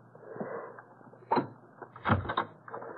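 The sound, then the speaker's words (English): A bolt slides back with a short clack, then a door bolted from the inside is pulled open with a heavier thud and a brief scrape, quiet, with no talking. “Why was the door bolted from the inside?”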